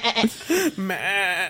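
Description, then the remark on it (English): A voice imitates a goat's bleat in a few quick, wavering, nasal cries, close and fairly loud, with a giggly, playful edge. “And just goat sounds in the back.”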